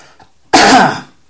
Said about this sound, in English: Oh, coughing.